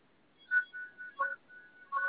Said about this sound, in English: let me turn off my phone, forgive me.